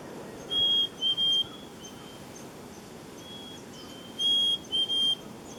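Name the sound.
black-capped chickadee song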